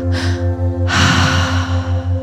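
A quick, sharp inhale followed by a longer, forceful breath drawn in, demonstrating a breathwork breathing pattern, over a steady pulsing low drone in the background.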